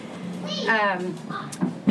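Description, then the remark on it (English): A single drawn-out cat meow, rising then falling in pitch, moderately loud, followed by a few soft thumps and faint background noise. “Knock it off, it's honey. Right. Eva's like, I want to talk about it, too.”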